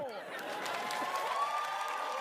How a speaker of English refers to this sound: Now who's cheering?